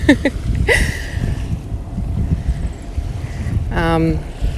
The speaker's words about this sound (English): I'm almost at the end of the path, and where I come over this rise, oh, there's a boat now. But you might be able to hear some waves. You can probably hear the boat now, that intrusive sound.